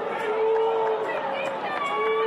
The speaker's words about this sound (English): The Marquee Network. What do you have against the Marquee Network? Believe me, you won't be booing about that in a year.